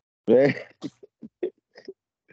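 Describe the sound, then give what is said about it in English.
A single loud sneeze bursts out with a voiced, breathy edge, followed by a few short, quiet vocal murmurs. “Bless you. Thank you.”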